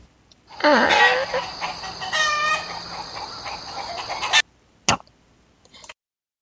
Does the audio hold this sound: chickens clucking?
yes